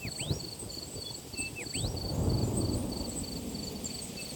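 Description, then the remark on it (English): Low thunder rumbles and swells partway through as rain gets ready to fall, while crickets keep up a steady pulsing chirp and a bird calls briefly near the start. “And by the sound of the sky, the rain is getting ready to fall.”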